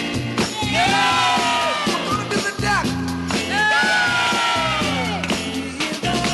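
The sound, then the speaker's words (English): Fake crowd-style whoops and cheers layered into a loud dance-craze track as its dance floor call to arms, swelling in two rising-and-falling bursts over a steady pounding beat. “And it has the sort of fake crowd.”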